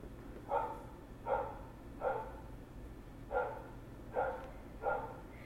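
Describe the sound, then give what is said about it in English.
A dog barks six times in a steady, evenly spaced rhythm, each bark short and moderately loud, set against a low background hum with no voices. “That fucking dog.”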